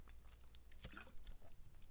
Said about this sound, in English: Sorry, I had to take a sip.